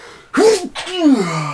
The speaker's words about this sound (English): Bless you, man. That's my first pod sneeze. Yeah, that's a good one.